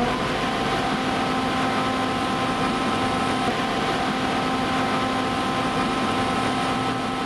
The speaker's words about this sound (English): It would be the whirring of my machine. It's almost like a and it's soothing and like the most perfect white noise.